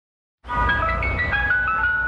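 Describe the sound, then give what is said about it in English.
A Mr. Softy ice cream truck jingle plays loud, a bright tinkling melody of sustained chiming notes over a low engine rumble, starting abruptly after a brief silence. “Many ears perk up when this jingle rings in the summer.”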